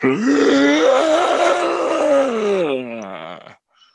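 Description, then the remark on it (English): A voice imitates the long, unearthly growl sliding into a moan of a zombie-like character that has caught fire and shambles with arms thrown up, low and rough with strong harmonics, held loud for about three seconds before trailing off into a wavering fade. “And he then begins to shamble and throw his arms up in the air, and he lets out this unearthly growl slash moan, the likes of which you've never heard before.”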